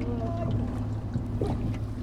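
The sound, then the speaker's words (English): A Coast Guard boat engine drones steadily as it passes, a low, continuous rumble with no break, while faint voices murmur in the background. “Clear the engine of the Coast Guard boat.”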